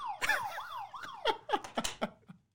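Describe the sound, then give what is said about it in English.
A short police-style siren sound effect from a contestant's game buzzer, heard when that contestant hits the buzzer first: quick, loud rising-and-falling yelps that break into choppy, clipped bursts before stopping after a couple of seconds. No one speaks. “So, I don't want that to remind you too much of getting pulled over”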